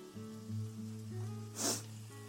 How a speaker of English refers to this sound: Can you hear the my onion sizzling? Smells amazing. What you want to be doing with the onion is cooking it until it's gone what's called translucent. So a little bit see-through.